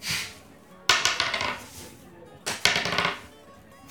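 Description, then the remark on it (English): Two bursts of dice clattering across a hard tabletop during a tabletop role-playing game's stealth and investigation checks, each a sharp impact followed by quick rattling bounces that settle, fairly loud, with no talking. “If we could get the dice on the table.”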